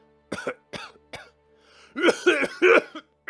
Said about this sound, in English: Raceland's cough is getting worse, Caraman. I've never seen him this bad. Even Goldmoon can't help him.